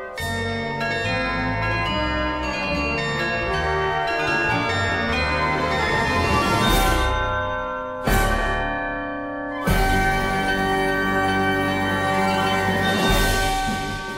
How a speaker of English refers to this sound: Like these chimes are the poet's airy rhymes.